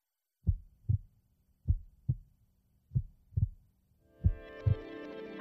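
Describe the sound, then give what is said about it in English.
A steady heartbeat rhythm thumps in low, paired double beats at the beginning of a song, repeating four times at a slow, even pace before sustained music fades in underneath the final beats. “I don't think it's a very scary song, but it does have a heartbeat as a rhythm.”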